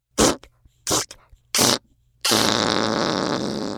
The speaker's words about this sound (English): He let out some farts, sounding like a deflating balloon. Oh, dear! Ew! It's so stinky!